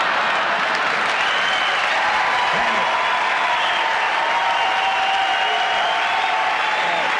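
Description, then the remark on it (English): Steady, dense audience applause fills the whole stretch, a loud continuous wash of many hands clapping with no pauses and no voices standing out. “I got a clap too.”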